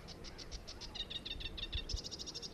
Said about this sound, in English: So I'm here, listeners, in the Wildfowl and Wetland Trust site in Arundel. And you can hear the sound of a sedge warbler.